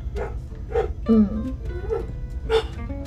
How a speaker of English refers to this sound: This dog will not shut up. He's singing. How could you? He just wants to share his beautiful voice with us.